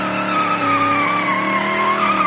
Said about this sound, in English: Then, with members walking into or out of the pool's entrance on the circle drive, Tommy would proceed to put the car in first gear, rev the engine beyond any manufacturer's recommended RPM limit, and drop the clutch.